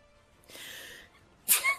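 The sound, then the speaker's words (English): A single sneeze: a breathy intake swelling for half a second, a pause, then a sharp, bright burst of air with a short trailing release. “Bless you! Thank you.”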